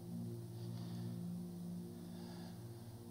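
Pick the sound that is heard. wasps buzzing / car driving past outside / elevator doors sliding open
car driving past outside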